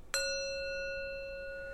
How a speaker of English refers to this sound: And so I have a little bell. Hopefully you can hear it. Let's test it.